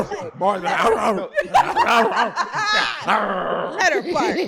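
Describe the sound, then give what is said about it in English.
A person imitates a dog, letting out a run of short, loud bark-like yelps and growly sounds, mixed with snickering laughter from others. “But nigga, what made you think of eating pussy and then barking?”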